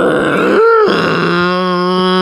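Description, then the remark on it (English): A voice imitates a horn that a man played at a meditation session: a loud, sustained, buzzing low tone with rich harmonics, starting with a brief rising honk and then holding steady for over a second. “And then this guy got some horn and it sounded like...”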